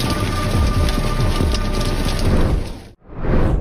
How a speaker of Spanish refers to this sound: es un recinto al aire libre, con muy pocos espacios para protegerse ante la lluvia, o en este caso, del granizo